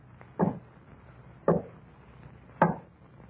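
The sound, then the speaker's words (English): Three slow, heavy knocks on a door, evenly spaced about a second apart, each a dull thud with a short sharp edge, with no voices in between. “And there was a knocking at the door.”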